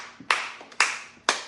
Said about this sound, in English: I'm the only one clapping.